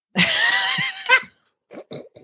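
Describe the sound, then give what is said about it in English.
A horse gives one loud whinny with a shaky, quavering pitch lasting about a second, followed by a pause and a few short, softer snorting nickers. “Three minis and a horse.”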